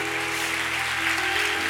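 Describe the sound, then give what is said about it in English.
A crowd claps steadily, a dense, continuous wash of many hands applauding at an even, fairly loud level, with no voices standing out. “Yeah, let's give John a big applause.”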